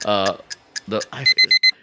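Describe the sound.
A timer alarm goes off with four quick, evenly spaced high-pitched electronic beeps, loud, right after a person briefly speaks.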